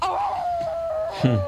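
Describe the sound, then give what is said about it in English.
Actress Frances McDormand imitates a wolf's howl at the Oscars, holding one long wavering tone that slowly slides downward, then ends with a short, lower, rougher burst of voice. “Starts howling.”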